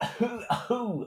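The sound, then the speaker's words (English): Someone voices a mock cough and throat hock imitating people spitting on the floor, a quick run of four rough bursts with a guttural, phlegmy rasp, no words spoken. “And then comes the hock.”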